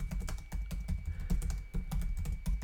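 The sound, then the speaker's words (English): Rapid typing on a computer keyboard while writing a tweet on Twitter, a steady stream of quick clicky keystrokes with a few brief pauses, no voices. “All right, I'm going to put one more tweet out there, even though I have a lot of these questions, it looks like, already.”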